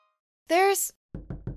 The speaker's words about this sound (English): it sounds like someone's knocking at the studio window.